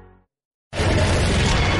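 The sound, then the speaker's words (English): After a short silence, a loud, sudden crash of breaking glass bursts in and keeps shattering and rattling harshly to the end, with no voices. “Okay, the glass has come up. You know what that means.”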